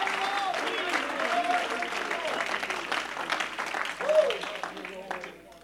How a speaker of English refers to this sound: Oh, we ought to clap our hands right now. We ought to give God praise.